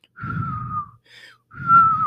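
A person whistles two long, steady notes with breathy air rushing underneath, separated by a brief, higher chirp-like whistle in between. Fairly loud, with no talking.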